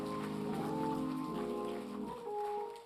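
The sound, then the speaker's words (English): A church audience applauds its young people in a dense, steady wash of clapping, with sustained musical tones humming underneath before the clapping thins slightly toward the end. “Let's give all our young people a round of applause.”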